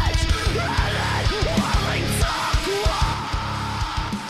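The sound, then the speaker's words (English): Loud, dense metalcore with pounding drums and heavy distorted guitars, a singer swooping between melodic lines and harsh screams, and synth layered throughout, playing continuously without pause. “I like the singing. I like the screaming. Very much that metalcore.”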